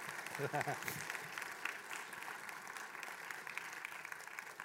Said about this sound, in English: Thank you so much. I appreciate your clapping, I really do. I want to challenge your thinking for a moment around your clapping, though, if I may.